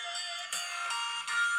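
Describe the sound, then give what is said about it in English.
A tinny song from a video plays through a small phone speaker, bright melodic notes with a few distinct note changes, thin on bass, continuing steadily with no one talking. “I need to stop playing a video on my phone on a podcast.”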